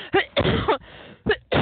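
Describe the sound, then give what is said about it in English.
A run of harsh, raspy coughs in quick bursts: two short hacks, a longer rough fit, then two more sharp coughs after a pause. No one speaks. “I have not coughed most of the evening, and I get here to do this, and I start coughing.”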